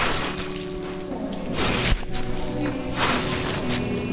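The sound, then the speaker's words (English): A shovel scoops through wet, squelching sewage sludge, with a couple of heavier scraping strokes over a steady, sloppy background churn. Moderately loud, with no talking. “Once again, Neil Henderson shovels as he was born to.”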